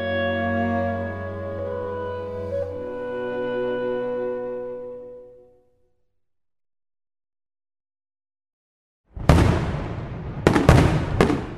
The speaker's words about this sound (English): Fireworks in Norway on May 17th. It's Norway's National Day.